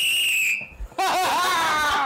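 A sustained high whistle tone holds for about half a second, breaks off briefly, then gives way to a louder, harsher wavering burst that fills the rest of the moment. No one speaks.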